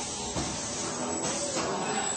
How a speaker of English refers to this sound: That's the brakes, the sound brakes. Okay, so we get off the ride over here, and that's my onboard narration of Revenge of the Mummy, the ride.